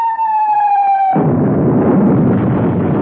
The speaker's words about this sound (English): Hey, that wasn't a humming noise. That was a whistle and a bang. Go quick. Turn that thing off. Someone's shooting at us. And very good shots they are.